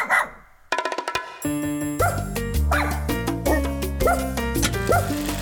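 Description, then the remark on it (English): A small chihuahua service dog yaps in a quick series of high, sharp barks, mixed with upbeat rhythmic music that plays loudly throughout. “Can you say service chihuahua?”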